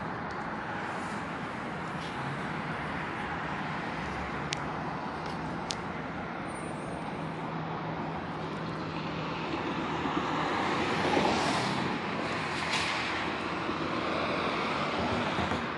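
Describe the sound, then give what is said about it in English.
A City of Ontario dumpster truck with blinking lights drives past, its heavy engine rumbling steadily in a broad droning roar that swells slightly louder near the end as it passes by. No one speaks. “This is the same City of Ontario truck company engaging in a POC, blinking lights on it, audible activity created and amplified, loitering in relevant position, the same City of Ontario dumpster truck company that engaged in driving past on Bonview”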